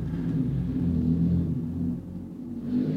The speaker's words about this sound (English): And a motorcycle pulls up outside the Golden Goblin. It's the baddest motherfucker you've ever seen. Yeah, two burly gentlemen clad in leather and chains with white beards step off their hogs.